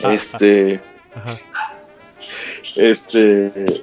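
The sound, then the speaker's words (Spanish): Dogs bark in a few loud bursts, with a high yelping quality and short pauses between them, and a voice may be faintly present in the background. “esos pinches perros no son míos para que no empiecen.”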